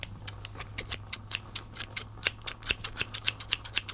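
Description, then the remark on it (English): Scissors snip over and over, cutting a necklace free, a quick, slightly uneven run of crisp metallic clicks, soft overall, with a faint steady hum underneath and no talking. “Necklace that I actually like tried to undo from the thing and it wouldn't come off, but I brought scissors and a bunch of little charms for it.”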